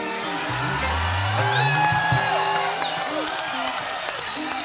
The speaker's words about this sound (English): You wouldn't be clapping if you knew what that meant.